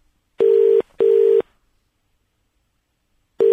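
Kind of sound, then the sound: signal or alarm, telephone dialing tones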